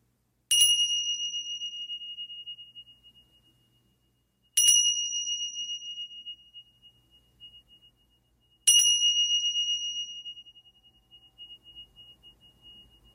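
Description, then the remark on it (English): A meditation bell is struck three times to begin a meditation, roughly four seconds apart, each clear, bright tone ringing out and slowly fading into silence before the next strike. “And so, listening for the sounds of the bells to begin our meditation.”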